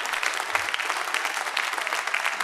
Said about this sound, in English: Give the Lord a big round of applause here today. Amen.